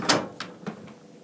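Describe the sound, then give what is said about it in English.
A door at the back of a kitchen, leading into a pantry/sunroom, shuts with a sharp bang, followed by a few softer rattling knocks as it settles. “Door's closing.”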